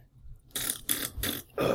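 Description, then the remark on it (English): A voice imitates burping with four short, raspy bursts in quick succession, fairly loud, with no speech around them. “And so I'd just walk down the street, like, farting and burping, like...”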